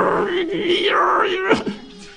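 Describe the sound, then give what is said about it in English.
A person imitates the wail of a cat that had climbed onto the house roof at night and wrapped itself round the chimney: a drawn-out, wavering cry that rises and falls in pitch, ending in a couple of short sliding yowls. “A cat had climbed up the cypress tree at the front, got on the carport, walked up on the roof while it was early in the night, and wrapped itself round our chimney where the heater was and stayed warm.”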